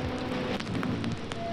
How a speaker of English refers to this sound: And you can, if you really like bear down on your headphones, you can hear the deep textured crackles of the record and just like that very soothing loop that just like just does not end and keeps throughout the entirety of this track.